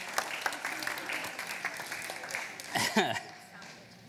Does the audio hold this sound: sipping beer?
no